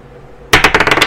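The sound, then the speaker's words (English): Dice rolled onto a game board: after a quiet moment, a sharp burst of rapid clattering clicks that bounce and settle over about half a second, with no talking. “You take the card, and I'll take the dice.”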